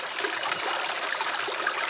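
Moore's Creek pours steadily over and beneath a low-water concrete bridge, a broad, even wash of continuously flowing sound, constant with no voices.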